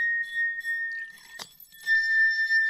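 A wine glass, tuned by changing its water level, rings with a steady, high sustained tone. Midway it breaks off for a brief watery splash as water is added or taken out, then rings again at a slightly shifted pitch, showing the glass being retuned.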